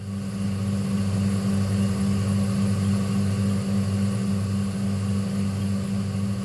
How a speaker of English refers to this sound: Number three is a fridge freezer buzz.